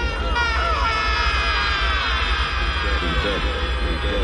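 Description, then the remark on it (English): A man's drawn-out, strained yell from a film, loud and wavering in pitch for several seconds, smeared by a heavy echo and layered over a dense, rumbling background. “Here's a really bad yell.”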